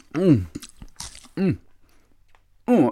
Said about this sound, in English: It's so big. I'm chewing the piece using my whole mouth. You can do it too if you like. My chews are so big, it's stretching my whole face into funny grimaces.